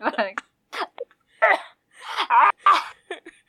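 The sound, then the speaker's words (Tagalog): A voice breaks into a series of short, whimpering wails and sobs, several uneven bursts in a row, fairly loud, like someone playfully imitating crying. “Sama ko umiiyak.”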